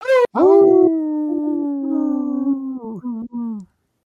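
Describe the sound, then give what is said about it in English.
A human voice imitates a dog's howl in one long, loud cry, held steady and sliding gently down in pitch before breaking into short wavering bits and stopping. “But thou shalt never interrupt the howl.”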